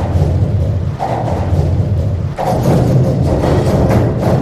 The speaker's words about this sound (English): Michael Rusenberg placed microphones on the many structures that cross this famous waterway in Germany. He took the sounds into a studio and manipulated them into a work he calls Cologne Bridges Symphony.